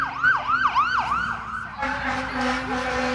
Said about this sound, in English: We also have the fire truck here.